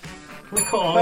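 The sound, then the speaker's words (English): A bright bonus-round bell dings once and keeps ringing clearly to the end, announcing a bonus question in a football quiz, following a brief stretch of low, murmured voice. “Bonus bell question time”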